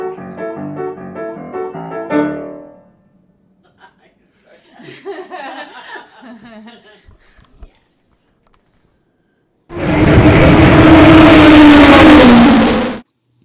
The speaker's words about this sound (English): So the sound of those cars, those are Indy Light Series cars, very similar to the cars that are used that are run during the Indianapolis 500, except they're a little bit smaller and their engines aren't as big.